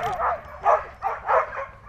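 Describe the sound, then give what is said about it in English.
Sled dogs bark and yip excitedly in quick, overlapping bursts, about five sharp yelps in under two seconds, loud with no talking, on a gray winter day in Trinary, a small village near the Upper Peninsula iron mining town of Munising. “I would find that riding a dog sled is as thrilling and natural an experience as you can have.”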